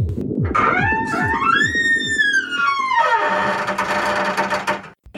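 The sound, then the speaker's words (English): A squeaky door creaks open with a long, wavering high-pitched whine that rises and then sinks, over low rhythmic thumping and a steady hum that continues after the creak fades. “One last time, pause it after the squeaky door and unpause it at 10, 36, and 45 seconds p.m.”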